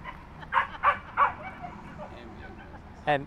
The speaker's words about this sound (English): That dog definitely had something important to say.